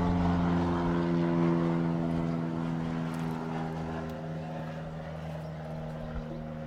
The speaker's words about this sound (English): We'll wait till the airplane goes by.